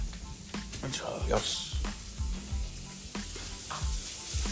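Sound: chorizo sizzling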